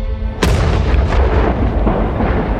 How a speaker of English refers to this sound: I've always tried to imagine how the Big Bang would have looked like. Maybe like a massive explosion.